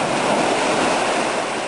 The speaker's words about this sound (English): For one thing, no one knows how deep this ancient fissure goes. Divers have been down to 436 feet and did not find a bottom. And get this, earthquakes rumbling thousands of miles away have caused huge waves to slosh around inside it.